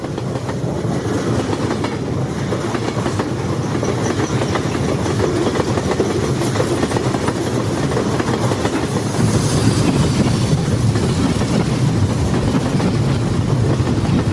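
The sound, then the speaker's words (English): A train rolls steadily along the rails with a continuous rumbling clickety-clack, fairly loud throughout, growing a bit louder toward the end, with faint squeals from the wheels. “Anyways, we're heading off into the train sunset.”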